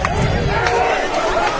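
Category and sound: crowd, stadium crowd noise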